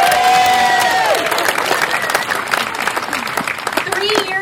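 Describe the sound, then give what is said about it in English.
Loud crowd applause at a morning roller-coaster fundraising event fills the whole stretch, dense clapping mixed with scattered cheers and whoops, with high, sliding cartoonish voice sounds riding over the noise near the start and end. “Let's have a big round of applause for Bugs Bunny and Daffy Duck, who are here with us today.”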